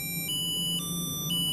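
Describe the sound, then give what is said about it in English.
A smart pill bottle's dose reminder chime: a steady electronic tone pattern of high, clear notes that shifts pitch about every half second, repeating evenly with no voices. “And then as that dosage time approaches, the bottle will chime. You'll hear that in a few moments.”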